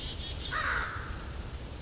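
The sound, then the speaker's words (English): A single harsh, rasping caw of an American crow rings out over a steady wash of outdoor background noise, with no talking. “There goes the crows. These are American crows.”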